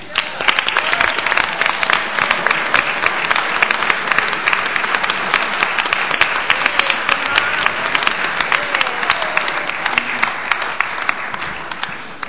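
A round of applause from a crowd at a meeting, dense rapid clapping that stays loud and steady for about twelve seconds before easing slightly at the end.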